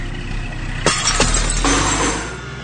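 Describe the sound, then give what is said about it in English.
A truck drives straight into a bar: a loud crash with glass shattering in three sharp bursts, each trailing into tinkling debris, over a steady low engine rumble; no one speaks. “Then I drove my truck back straight into the bar.”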